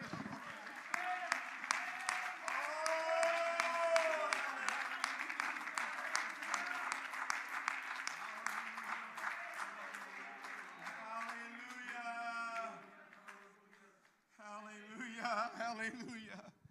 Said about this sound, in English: Oh, would you clap your hands?